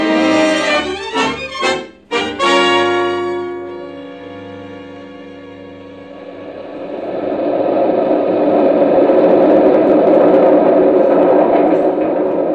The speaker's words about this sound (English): That's the new elevated railway train, Julia. Just one of the sights of New York. You mean it runs way up there above the street? That's right.